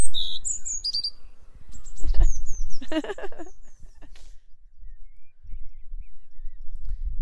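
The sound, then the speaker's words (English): Birds, including a robin, sing in an early-morning chorus: bright whistled notes and quick chirping trills, a burst of busy calls in the middle, then sparser twittering over a low outdoor rumble. “I think something else I really enjoy about hearing bird song in general, not just this time of the morning, because I'm actually not normally up at this time”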